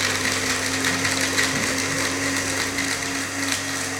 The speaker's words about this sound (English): Okay, let's blend that up then.